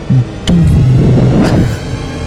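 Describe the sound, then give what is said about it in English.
A short burst of the THX theater intro: a deep, loud, rumbling low drone that holds steady for about a second, then trails off into a quieter hum. No one speaks. “That sound that all the theaters make when you're it's like DHX sound.”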